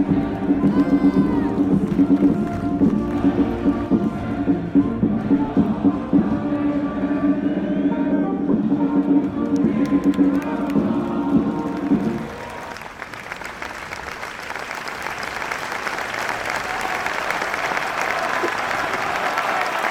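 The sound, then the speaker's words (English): A large stadium crowd sings the anthem together on a Saturday night in a sustained, tonal roar, then breaks into loud, continuous cheering and applause that carries through the remaining seconds. “Some crowd on the same.”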